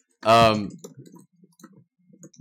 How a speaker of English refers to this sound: See, I know the typing is you because you're the only one not.